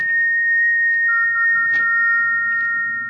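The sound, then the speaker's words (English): A thin, eerie whistle in a bedroom late at night as a storm brews holds a steady high pitch, with a second slightly lower tone joining partway through. It sustains unbroken over a faint low rumble, with no voices. “It's come again. That whistle.”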